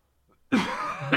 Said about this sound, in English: Now we're dropping into upper respiratory zone where I'm like, you can hear it more. I feel better, but now I'm coughing.